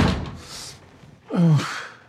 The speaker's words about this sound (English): Slams the door to wake him up, which I love that move always.